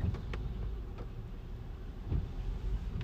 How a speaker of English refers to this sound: But you might hear the windshield wipers. I'm still in the truck driving off. It's a little rainy today